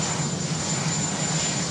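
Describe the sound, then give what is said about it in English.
A helicopter engine roars steadily and fairly loud, with a constant high whine over a broad rushing drone, continuous throughout with no voices, as the president gets off the helicopter. “This was the president getting off the chopper.”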